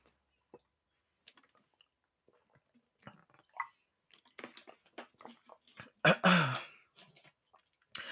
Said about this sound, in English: Child, I cannot talk. Sips water.